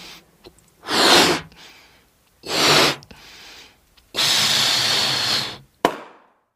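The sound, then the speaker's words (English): A balloon lets out air in three hissing, squealing bursts, the last one long and steady, then bursts with a single sharp, loud pop. “Do you know what just happened to my balloon? Yeah, it popped.”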